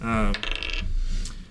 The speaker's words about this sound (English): Don't roll that same fucking dice again. All right. Roll the dice. This is a 1.